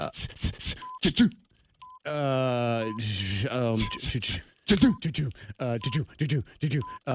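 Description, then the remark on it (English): Short, faint electronic beeps repeat about once a second beneath animated voices, while someone briefly voices a drawn-out, ringing tone imitating a telephone during a timed game of naming office sounds. “A phone. Yes.”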